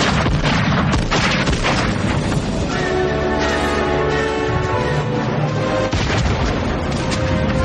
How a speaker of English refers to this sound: He uses a Dirty Harry's gun. Yeah, and I love the gunshot sounds. It's like...